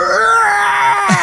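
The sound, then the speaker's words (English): A sustained, wavering wail from video game enemies on crosses that yell at nightfall, a loud moaning scream that holds a steady pitch before dropping into a brief lower groan at the end, with no talking. “And I remember the first time that it became nightfall and I'm hearing all this crazy screaming and groaning.”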